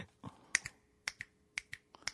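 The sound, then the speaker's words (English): Finger snaps imitate horse hooves, sharp clicky pops falling in quick uneven pairs and clusters like a trotting gait, about a dozen snaps over two seconds with no talking. “Oh, you're so much better at the horse than I am.”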